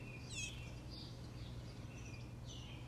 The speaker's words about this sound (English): Just going to let the birds do the talking today.